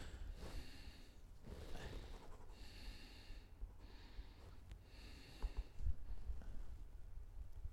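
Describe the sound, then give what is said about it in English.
Heavy, noisy breathing right up against a microphone, a steady run of about five or six loud, rushing inhales and exhales, each one close and airy with a slight snort-like edge. “You are breathing pretty hard into that mic.”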